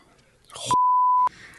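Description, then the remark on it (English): A single steady censor bleep, a loud pure tone lasting about half a second, abruptly cuts into a person's speech, which resumes right after. “Beep that, probably.”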